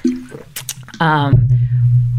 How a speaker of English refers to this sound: hold on, I gotta take a drink of water.